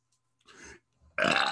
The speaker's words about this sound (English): He tried to burp everybody. It just didn't work.